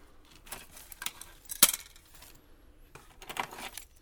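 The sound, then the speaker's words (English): Car keys jangle in several short, uneven bursts of bright metallic clinking, with one sharper chink in the middle, fairly quiet, with no voices. “where are the car keys?”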